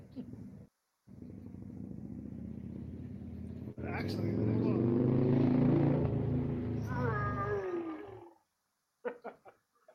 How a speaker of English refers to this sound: Actually, it's the sound of the dog. Because he's a cyborg.